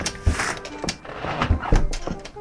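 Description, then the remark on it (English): A door is opened, with a few dull thuds and a rattling latch and hinge noise spread over a couple of seconds. No one speaks. “Now, if you'll turn around to face the door, I'll open it for you so you can be on your way.”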